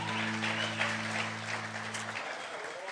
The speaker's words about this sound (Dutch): Well, thanks, guys. Let's give the band a great big hand, too. Laten we de band een groot applaus geven.